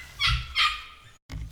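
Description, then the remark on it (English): A dog gives two quick, sharp barks in a row, loud and slightly raspy, followed after a short pause by the start of another bark. “And my dog is barking in the background”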